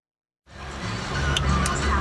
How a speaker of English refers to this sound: It's a sweltering day on 26th Street, a busy corridor with constant traffic and music flowing out of many of the Mexican restaurants, laundromats, and pawn shops.